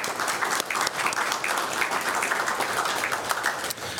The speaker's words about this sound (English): There's seven chaplains in the unit, and they do such a fine job day in and day out. We really appreciate that. So a round of applause for our chaplains.